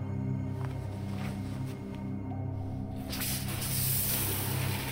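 shower water spraying

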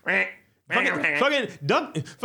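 duck quacking

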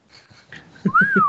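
attempted whistling

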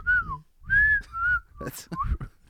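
person whistling a tune

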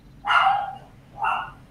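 dog barking

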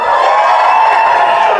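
audience applause and whooping

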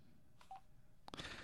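telephone dialing tones

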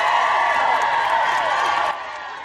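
crowd roaring and cheering

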